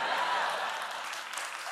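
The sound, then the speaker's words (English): Studio audience applause fills the short stretch: a steady, dense wash of many hands clapping at once, moderately loud and sustained throughout without any voices standing out. “Really, applause.”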